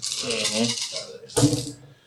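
Dice, with an extra die added for willpower, rattle and clatter in two bursts, a longer shaking rattle followed by a sharper, louder tumble that quickly settles, with faint voice-like murmur underneath.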